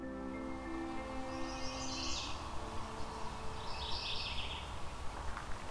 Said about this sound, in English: So I'm hearing a mourning warbler just arrived at a particular part of, I believe it's the Currie Tract, Halton region. So we've got chestnut-sided warbler and mourning warbler.